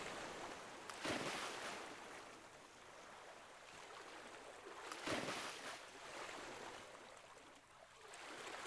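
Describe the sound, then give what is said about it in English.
Steady ocean surf with a constant rushing wash, broken by two louder breaking surges a few seconds apart, as horses swim and dive in and out of the waves. No voices. “Swimming with ease as they dive in and out of the waves.”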